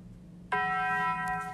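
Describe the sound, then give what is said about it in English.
After a brief quiet hum, a single bright bell chime, the Taco Bell chime sound effect, strikes suddenly and rings on with a steady, shimmering tone, loud, with no voices. “Oh, that's Taco Bell bomb.”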